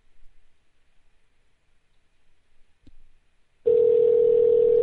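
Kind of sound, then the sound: signal or alarm, outgoing phone call ringing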